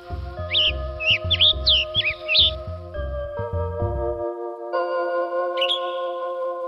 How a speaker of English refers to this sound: And the tanager on the other side, on the west, has a different kind of call.